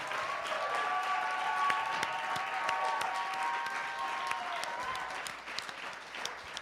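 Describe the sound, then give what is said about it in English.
A crowd gives the night's performers one more round of applause, with dense, steady clapping that holds an even level for several seconds before thinning slightly at the end, with a faint sustained tone running underneath. No one speaks. “Ladies and gentlemen, I think all of our performers tonight deserve one more round of applause.”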